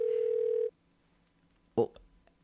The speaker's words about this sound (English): Now, I think it's time to pick up this goddamn phone. Now let me give a little ring. Oh, I'm excited about this one. Come on. Okay, here we are. I'm gonna dial speed there. There we are. It's ringing.